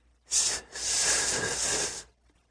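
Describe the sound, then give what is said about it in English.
A person makes a hissing sound with their mouth, a speech trick of letting out a little breath before a hard word: a short hiss, a brief pause, then a longer sustained hiss of about a second and a half, steady, with no words spoken. “So when I feel like I'm going to have trouble saying a word, I try to sneak up on it by making a hissing noise.”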